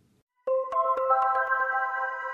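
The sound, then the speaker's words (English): A telephone rings twice with a steady electronic tone that starts abruptly after a brief silence, heard in Singapore on a call placed to a London number. It sounds moderately loud, with no voices. “I punched in a London number and far away in Singapore, the phone rang twice.”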